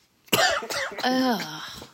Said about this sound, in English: Oh, man. I haven't been coughing until you started recording.